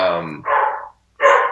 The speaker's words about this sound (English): my dog is barking at the sound of my voice in this room because she thinks there's like an intruder outside. So I've been like periodically opening this door just to prove to her that I'm still in here.